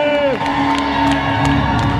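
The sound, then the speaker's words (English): A crowd at an event cheers and whoops steadily for two seconds for a celebrated event space client, with scattered sharp bursts that could be clapping mixed into the loud, continuous roar of voices. “Everybody clap it up.”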